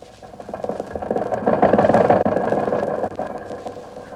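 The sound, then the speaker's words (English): The engine of Jack's old jalopy idles with a rough, rattling chug, its rapid pulsing beat swelling in loudness over the first second or two and then holding steady without any voices. “Why, the motor is in wonderful condition.”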